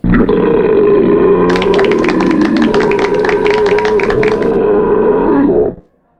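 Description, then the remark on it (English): A long, loud belch during a beer tasting that rumbles steadily for nearly six seconds, turning raspy and gravelly in the middle before cutting off abruptly. It stands alone. “We'll be discussing and rating these beers with these suds ratings, plus our signature belching sounds.”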